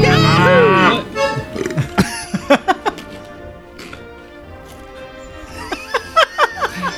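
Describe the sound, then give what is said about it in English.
A loud cow moo, used as a buzzer sound, bursts out for about a second, then gives way to quieter scattered clicks and faint background voices. “So you don't have a buzzer, but you have a cow.”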